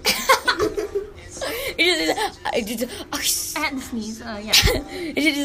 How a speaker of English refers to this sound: Like, I had to sneeze. Bless you.